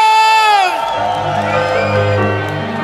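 A big festival crowd at a King's Day (Koningsdag) party in Brabant, Netherlands, roars and cheers for a 1990s act after a shouted call from the stage, a loud sustained wash of whoops and yells with a low droning hum underneath.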